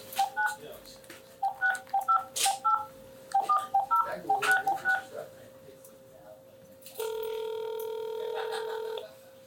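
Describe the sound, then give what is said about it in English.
A rapid run of touch-tone keypad beeps dials a phone number in uneven bursts to call a contest winner, then after a short pause a steady, fairly loud ringback tone sounds for a couple of seconds. “So we about to see if you're going to answer this phone and see if you're really a winner, because these guys said if you don't answer, we moving on.”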